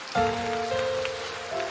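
A crowd claps steadily in a dense, crackling wash of applause, with sustained organ-like chord tones held underneath and shifting pitch partway through.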